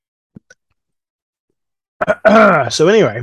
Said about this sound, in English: I think I've got a form of like walking pneumonia or something. I can't stop coughing.